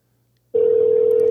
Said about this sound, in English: All right, it's ringing. We're trying again.